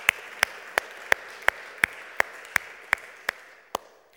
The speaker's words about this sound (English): So should we give them a quick round of applause?